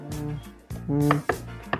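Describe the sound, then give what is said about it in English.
Several hollow, resonant knocks on a wooden door, spaced unevenly with short ringing tails, each strike sharp and fairly loud, with no voices. “Someone is knocking at the door. You hear that?”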